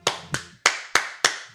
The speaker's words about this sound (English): Everybody clap.